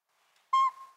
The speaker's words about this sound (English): A pint-sized northern pygmy owl, not much bigger than a pine cone, hoots from a northwest treetop on a winter morning. Before long, this rufous brown diurnal owl, a determined predator of small birds and mammals, attracts a crowd.